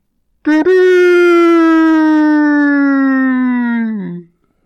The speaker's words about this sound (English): Sam asks if there was two horn blasts. He gets out of his tent and sees Chet standing there. Did Sam dream of two horn blasts? No, it was two blasts for foes approaching.